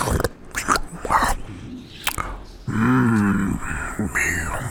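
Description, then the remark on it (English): Wet crunching and biting noises of a creature eating a body come in sharp bursts, then give way to a long, low, wavering growl-like groan that carries on to the end. “You just hear this crunching as it... food.”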